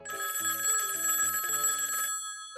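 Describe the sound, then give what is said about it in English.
An old-style telephone bell on a radio call-in show rings in a single continuous, rattling burst of about two seconds, loud, then cuts off abruptly. No one speaks. “Let's go to the phones for this one.”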